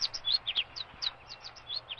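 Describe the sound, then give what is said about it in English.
A finch sings a quick, bright run of high chirps and twitters, about fifteen notes in two seconds, heard clearly on its own with no voices. “Now then, using your expert knowledge of bird sounds, is that a finch or a starling? I've literally no idea. Well, of course you have. That's the point of it. Come on. A finch? Yes, you're right.”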